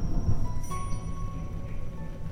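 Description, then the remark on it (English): Deep, continuous thunder rumbling low and heavy throughout during a lightning storm in the Blue Ridge Mountains of North Carolina, a sustained roll that swells slightly near the start and stays steady, with no voices. “The two little girls shuddered in the thunder from inside their canvas tent, labeled number 7, deep in the heart of the Blue Ridge Mountains in North Carolina.”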